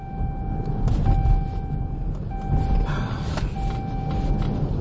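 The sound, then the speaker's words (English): A car's seatbelt warning tone sounds inside a moving car because the driver is driving with no seatbelt on. The steady electronic tone holds for a second or more at a time with brief breaks, over a constant low rumble of road and engine noise. “Sorry about the beep, but I'm driving with no seatbelt on because I'm irritated right now.”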